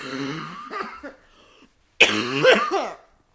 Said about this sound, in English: Just because I'm still sick. Jesus Christ. Sorry, everyone. Yes, my cough is still here and not going anywhere. I'm very sorry.